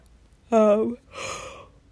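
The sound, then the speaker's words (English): A person yawns once, starting with a voiced, falling 'ahh' and trailing off into a long breathy exhale. It is moderately loud, with no other sounds around it. “How do you stop yawning? I don't think I normally yawn this much.”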